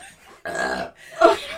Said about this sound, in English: I'm going to burp, but I think it's going to hurt.